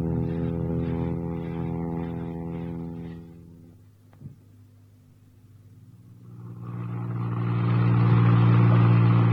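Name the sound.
car engine driving off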